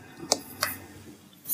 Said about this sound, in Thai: คุณกล้ามากนะคุณจับกระดาษบนเครื่องอัดเสียงนะฮะก็จะมีเสียงเข้าไปเนี่ย